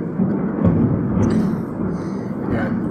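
Loud thunder rolls as a deep, continuous rumble that holds steady for the whole few seconds, with a dense low-pitched roar and no sharp crack.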